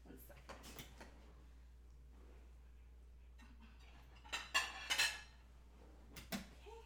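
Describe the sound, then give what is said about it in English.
A few soft knocks and shuffles, then a cluster of sharp ceramic clinks and clatters as a little plate is taken from a cupboard, over a steady low hum. “See if I could just grab a little plate here.”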